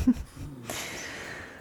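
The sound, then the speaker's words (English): A little puppy snoring on a person's lap: a quick low snort, then a soft, airy wheeze of breath that trails on steadily. Faint, with no talking. “So I have a little puppy on my lap, as always, snoring.”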